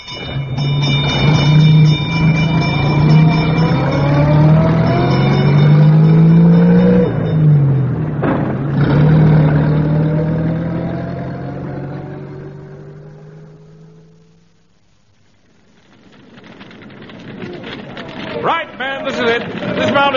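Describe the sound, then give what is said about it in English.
An old fire engine's motor rumbles loudly, its pitch rising and falling through several revs before the sound fades away; a different mechanical clatter follows near the end. “Stand by the controls at the rear of the engine.”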